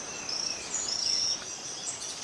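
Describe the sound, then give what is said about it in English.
A poison frog, Epipelobates bollengeri, gives a high, buzzy trilled call in a couple of short bursts, clearly audible over a steady hiss of forest insects and ambient background. “Okay, that's a poison frog, you said?”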